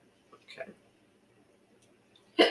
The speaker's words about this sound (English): Okay. Now I have the hiccups.